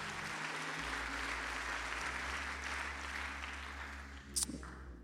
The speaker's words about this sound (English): One more time, clap your hands unto the Lord in the house.